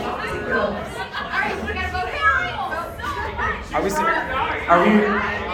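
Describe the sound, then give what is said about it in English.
A live audience chatters all at once, many overlapping voices forming a steady, lively murmur with occasional louder calls rising above the crowd noise. “I do believe the crowd is saying right now.”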